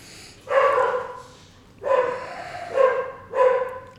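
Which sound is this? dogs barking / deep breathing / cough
dogs barking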